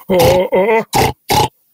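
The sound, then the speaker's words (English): A live pig, still eating a body, grunts four times in quick succession, loud, the first two calls longer and more drawn out, the last two short and clipped. “That's live pig. That pig right is there. Still eating that body.”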